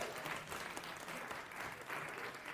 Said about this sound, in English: So you can give them a big round of applause, too.